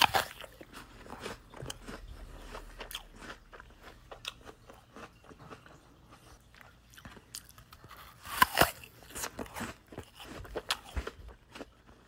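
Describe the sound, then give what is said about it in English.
People chewing and crunching food, a steady stream of sharp, irregular crunches and moist bites with a louder cluster of crunches toward the end, no voices. “for diagnosing a long unrecognized medical condition, misophonia, the distress at hearing other people make chewing sounds.”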